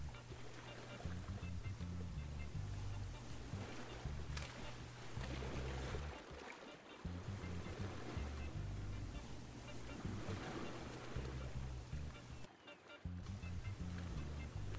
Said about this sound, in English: As you do, the swell rushes around you as if in welcome.